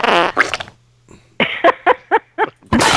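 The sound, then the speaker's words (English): A string of loud fart sound effects: a long sputtering blast, a short pause, then four quick punchy toots in a row ending with a harsh burst. “You in a fart sound noise tonight”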